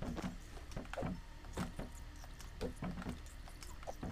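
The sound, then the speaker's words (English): A rapid, irregular series of dull thumps and clatters as books are knocked off a big bookshelf one after another, steady in loudness, with no talking. “I'm just knocking all the books down.”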